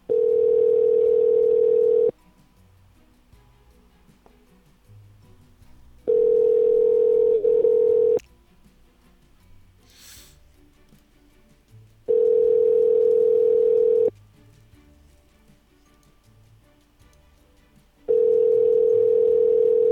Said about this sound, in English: That phone number just makes a weird noise.